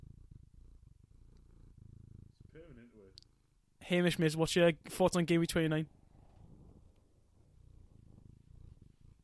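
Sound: cat purring near microphone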